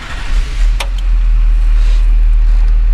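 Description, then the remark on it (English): A tuned diesel pickup truck engine, locked in fifth gear, roars loudly on a dyno, its deep rumble building briefly before holding at a steady high pitch, with a short sharp click early on. “That way we can lean on the truck hard in the RPM window that I want it to run.”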